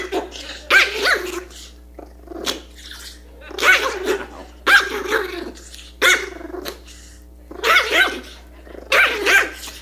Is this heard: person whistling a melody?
no